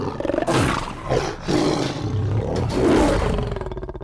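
A wild big cat, recorded within inches for use in The Lion King, roars and snarls, loud and gravelly, in a few long surging bursts that swell and rumble with no pauses for silence and no voices.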